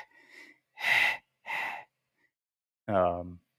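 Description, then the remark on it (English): Heavy, rasping breaths in a horror film soundtrack, loud: a faint breath, then two harsh noisy inhale-exhale pulses, a pause, and a final voiced, falling gasp-like groan. “I mean, this whole movie is just a lot of breathing.”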